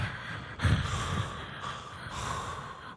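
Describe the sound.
Someone mimics another person's loud, heavy breathing, with raspy, snorting breaths that run continuously for about three seconds, with no talking.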